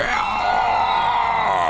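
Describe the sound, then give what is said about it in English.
A loud, harsh creature shriek of pain rings out continuously for under two seconds, strained, as the creature is hit by a fireball, with no speech around it. “You see that he shrieks in pain as you hit with that second fireball.”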